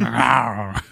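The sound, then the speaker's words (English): A person's voice imitates the growly noise of the character Yennefer from The Witcher: one sustained, rough, throaty rumble lasting most of a second, fairly loud, then a brief breathy sound at the end. “I can't make that growly noise, otherwise I would.”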